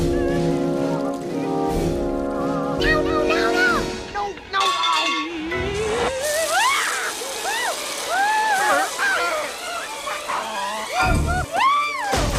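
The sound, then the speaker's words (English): A musical passage gives way to steady, noisy water splashing, with high squealing, whooping voices rising and falling over the churning spray until the end. “Water is not funny.”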